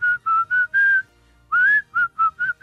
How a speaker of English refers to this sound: Can I tell you a secret? That is one of my hidden talents as well. You can whistle both ways? I can. I can whistle just about any song you give me.